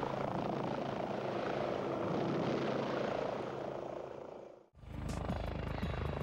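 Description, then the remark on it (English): A Scout helicopter's rotor and engine roar steadily and loudly for several seconds as it rescues an injured soldier from deep in the jungle, then briefly cut out before the heavy, throbbing noise resumes. “And here the Scout is rescuing an injured soldier from deep in the jungle.”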